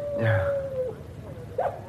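A dog howls in a long, steady, slightly falling note, followed by a shorter rising wail, heard at moderate volume against a low background rumble.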